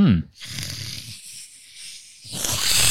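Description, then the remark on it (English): A person imitates a cat with a breathy, raspy, hissing growl. The sound runs for a couple of seconds, briefly dips, then returns loud and rough. “He's channeled my cat.”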